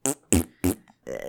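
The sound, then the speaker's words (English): A voice imitates fart noises: three short, sputtering blasts in quick succession, then a longer buzzing raspberry trailing off at the end, used as the sound of pirates sliding down a rope. “Why is it making a fart noise?”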